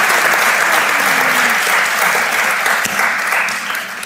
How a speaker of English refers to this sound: And so you guys, can we give one more round of applause for everybody? It's so good.